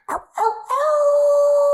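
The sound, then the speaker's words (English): A coyote gives two quick, sharp yips, then breaks into a long, steady, high howl that holds loud without fading, with no voices around it. “Coyote howls.”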